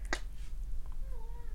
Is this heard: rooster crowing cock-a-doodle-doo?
no